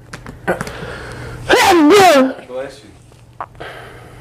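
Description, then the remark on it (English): A single loud, forceful sneeze bursts out, a harsh noisy blast with a strained voiced cry running through it, set between quieter stretches of low murmuring and faint background noise. “Bless you, nigga. That motherfucker sound like it hurt.”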